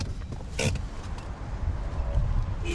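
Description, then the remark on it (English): A car rolls in and parks at the far end of a full-service filling station with hydrogen fuel on the outskirts of Reykjavik, Iceland, with a low engine rumble, a brief sharp creak or click partway through, and faint mechanical whines near the end; no one speaks. “parks at the far end of this full-service complex, past the car wash, the pumps, the convenience store, and the snack bar.”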